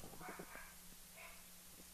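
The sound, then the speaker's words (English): Faint dog barks from a dog that has been barking for about ten minutes: a quick cluster of yaps early on, then a single bark a moment later, over a low steady hum with no one talking. “The dog is barking. Dog's been barking for like 10 minutes.”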